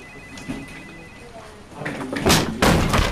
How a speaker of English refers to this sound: Going into this next one, I picture an executive's office, and he's sitting at his desk, and the door flies open.